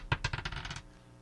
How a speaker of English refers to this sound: I've got one of my old dice from my dice bag, or die, for, I guess it is. Anyway, I'm going to roll this.